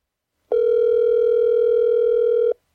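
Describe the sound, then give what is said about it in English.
A steady telephone dial tone as a phone call is placed, humming at one constant mid pitch for about two seconds, then cutting off abruptly, with no talking over it. “Okay, now let's go ahead and give John Shaw a call.”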